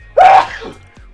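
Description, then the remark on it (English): A single loud sneeze: a sudden sharp burst with a voiced edge that quickly fades into faint breathy noise and near silence. “Just not the sneezing part.”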